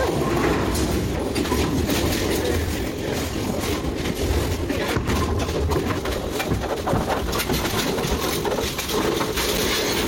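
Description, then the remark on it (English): Loud, continuous mechanical rumbling and clattering from a bowling alley pinsetter machine running behind the scenes, with rattling, grinding textures and scattered knocks throughout as it works to set pins. “This machine goes through a lot of work just to set pins.”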